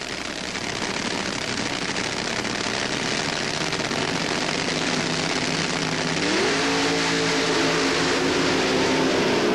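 A loud, continuous engine roar from the drag racing cars of Pat Dakin and Frank Bradley accelerating down the strip in the rain-delayed eliminations at the '77 Gator Nationals, with a tone that climbs in pitch partway through as the engines wind up; Dakin wins by about a car length.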